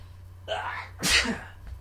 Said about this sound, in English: I'm going to sneeze.